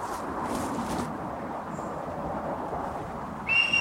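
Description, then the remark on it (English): A bird flying about and calling gives a clear, high, steady whistle near the end, loud over a constant rushing, windy background, with a fainter brief whistle earlier. No one speaks. “Yeah, you've never heard one just flying about and calling. It's a proper whistle.”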